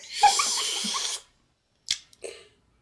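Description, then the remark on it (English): A loud, hissy slurp of coffee lasting about a second, followed after a pause by two short, softer gulping or breathy sounds. No talking. “Oh, the slurping sound doesn't sound good. That's good coffee.”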